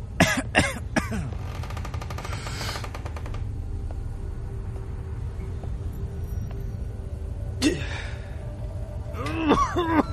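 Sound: coughing and throat clearing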